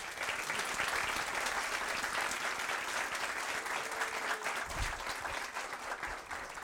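A crowd claps steadily in sustained applause, a dense, even wash of many hands that holds at a fairly constant loudness for several seconds with no voices over it.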